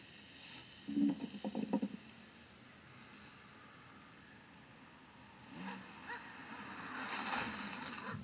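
A car pulls up, probably the character Ransom arriving; its low engine rumble is quiet but steady and slowly grows louder toward the end, with a brief cluster of sharp knocks early on.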